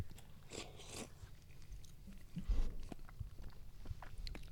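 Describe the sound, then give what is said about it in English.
Wet slurping as raw oysters are sucked from their shells, lips put to the shell and the oyster thrown back, followed by soft chewing and mouth smacks, with no talking. “We're gonna slurp them.”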